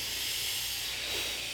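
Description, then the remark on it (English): A steady, airy hiss of a long breath drawn in through the left nostril while the right nostril is closed, continuous and even for the whole moment with no voice, broad and bright with slight swells in strength. “Close the right nostril and start breathing long in the hissing through the left nostril.”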